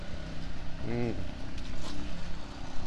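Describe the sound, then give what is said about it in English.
A lawn aerator's engine drones steadily in a dense, rumbling noise, with a short rising-and-falling tonal whine about a second in, and faint murmuring voices underneath. “That sounds like he's aerating. He's aerating. Yes, sir. I told you. This is an aerator, isn't it?”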